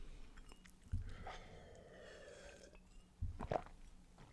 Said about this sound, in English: Take a sip of my drink.